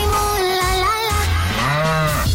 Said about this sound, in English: If the cow moos, what happens